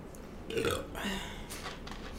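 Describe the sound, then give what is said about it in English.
A loud burp with a raspy, drawn-out rumble that rises and trails off over about a second and a half, heard on its own with no talking. “No, the burp didn't taste green. What did the burp taste like? Cheez-Its.”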